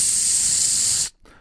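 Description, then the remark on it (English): A single steady aerosol-can spray hiss, imitated with the mouth, lasts about a second, bright, then cuts off abruptly into near silence with faint background noise. “That was a perfect can. You just sprayed it in your mouth.”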